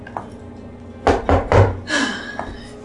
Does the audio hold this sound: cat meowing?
no